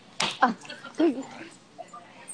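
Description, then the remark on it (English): A female dog pants in short, breathy bursts while shaking a toy, mixed with a few small whimpering noises, three quick clusters followed by quieter puffs, soft and irregular against a low background hiss. “And then now that you've said that, all I hear are these, like, little, panting noises. Background. As she's trying to, like, shake the life out of this toy.”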